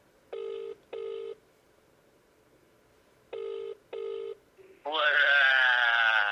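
A phone ringback tone from a call placed to a guest on the show Not the Footy Show sounds in two double-ring bursts with a pause between, clear and steady, before a loud voice cuts in at the end as the call connects.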